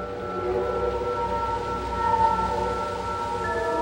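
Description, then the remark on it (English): Whale song: long, sustained tonal calls that hold and slowly waver over a steady low rumble, continuous and moderately loud, with no voices. “At the moment, you tend to say, well, I'm going to just play waterfalls and whales and the like.”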